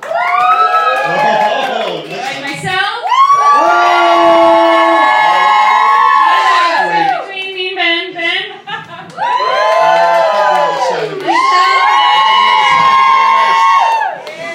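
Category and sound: crowd, audience cheering and whooping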